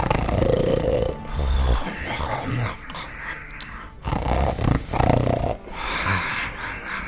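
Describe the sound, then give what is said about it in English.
Loud, rasping snores from a dwarf captain asleep at the end of a table repeat in a slow rhythm of deep, rumbling inhales and snorting exhales, filling the whole stretch with no talking. “And as he starts to continue, you hear a loud snoring.”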